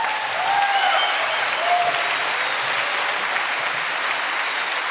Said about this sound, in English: Luke, bask in it, my friend. No one will ever clap for you again. No one claps for investigative journalists.